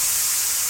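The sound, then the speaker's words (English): A steady, loud hiss of escaping steam, a sound effect introducing the steam zone segment on The Ride with Royce, broad and bright like a pressurized jet, holding constant for under a second with no voices. “It's time to get into the steam zone on The Ride with Royce.”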